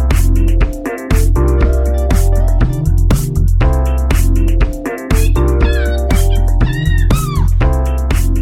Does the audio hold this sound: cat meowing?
yes